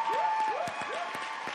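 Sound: audience applause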